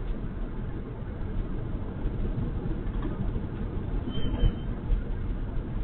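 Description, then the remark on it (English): A steady, low rumble of road and engine noise fills a moving car's interior on the way to Eugene, continuous and fairly loud throughout, with a faint brief squeak near the end and no voices. “But I'm in the car on the way to Eugene.”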